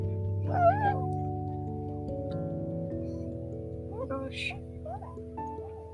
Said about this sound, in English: Oh my gosh, the cat's down here. Why is the cat to be everywhere?